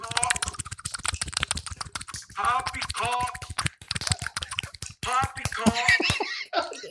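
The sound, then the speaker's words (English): Rapid, steady slapping pounds away while a voice makes wobbly, warbling mouth noises over it, the two improvised effects running together for several seconds. “You do the slapping.”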